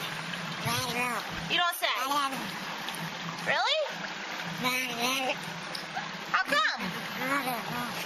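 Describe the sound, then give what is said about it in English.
A sea otter in water lets out a series of squeaky, wavering calls that sound almost like speech, with soft water splashing behind them, fairly loud. “This sea otter talks.”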